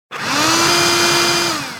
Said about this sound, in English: A vacuum cleaner! Not just any vacuum cleaner, a robotic vacuum cleaner.